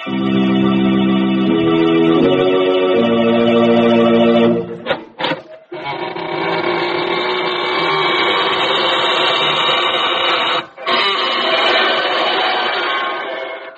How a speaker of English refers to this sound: This is your host to welcome you through the creaking door.